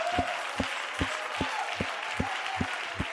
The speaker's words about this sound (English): Come on, all the honest people ought to clap your hands.